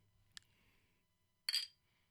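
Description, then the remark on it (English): Tall glass bottles of Mexican Coke, made in Mexico, clink together in a toast: a short light tap, then about a second later a louder, brighter clink with a brief ringing tone. No one speaks. “Dang, we just missed a great opportunity. I know. The clink.”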